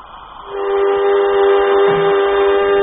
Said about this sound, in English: Airlock, contact. As she begins to fill up, we should hear it.